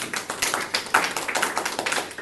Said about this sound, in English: So please give her a warm hand of applause today.